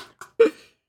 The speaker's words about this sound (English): our 4 Twitch followers are just watching me blow my nose intensely on this stream right now